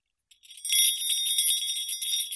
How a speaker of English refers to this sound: Lovers of the story will recognize that jingle bell. Visitors can even take one home as a keepsake.